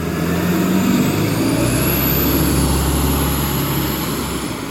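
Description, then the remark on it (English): A bus pulls up close by, near a spot under a tree, its heavy engine rumbling in a loud, steady low drone with a faint high whine above, lasting throughout with no voices. “And that was not Niagara Falls, that was a bus pulling up to near where I am under the tree.”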